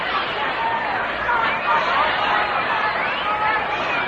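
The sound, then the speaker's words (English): A steady, dense murmur of a large crowd at a Dodgers–Giants baseball game, with Commissioner Chandler in a field box, many overlapping voices blending into a continuous babble with no single speaker standing out, holding an even level throughout. “Fine crowd on hand, headed by Commissioner Chandler, who's sitting down in the field box.”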